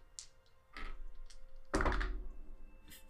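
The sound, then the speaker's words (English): Dice clatter on a tabletop during a game: a few light clicks, then a louder tumbling rattle that settles after a moment. Fairly quiet, with no talking. “Let's grab some dice.”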